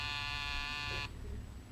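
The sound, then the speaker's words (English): A door buzzer sounds once at Mr. Benny's door in a radio comedy, as a caller from Beacon's Van and Storage arrives: a steady, harsh electric buzz, rich in raspy overtones, lasting about a second before cutting off abruptly, leaving only a faint low hum. “There's the door buzzing.”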